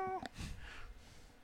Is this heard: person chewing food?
no